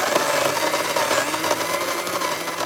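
A vacuum cleaner runs steadily with a loud, even motor whine and hiss spread across a wide range of pitches, holding constant throughout with no voices.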